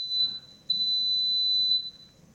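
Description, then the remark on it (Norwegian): Two piercing electronic beeps at a steady high pitch from a dishwasher, a short one then a longer sustained tone, similar to a smoke alarm, with faint low background noise. “Nei, jeg tror det var oppvaskmaskinen.”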